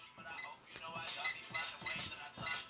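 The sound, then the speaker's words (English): A kitchen timer being set, with a quick, irregular series of short, high electronic beeps and button clicks over a low background murmur. “Oh shit, I gotta put a timer on.”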